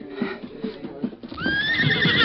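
A horse lets out a loud, high whinny that rises and wavers in pitch, preceded by a second of rhythmic hoof clopping and shuffling, with no one talking.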